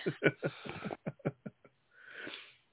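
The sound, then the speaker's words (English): A fit of coughing: a quick run of harsh, choppy bursts that trails into a few shorter hacks, then a long, breathy inhale. “you're coughing”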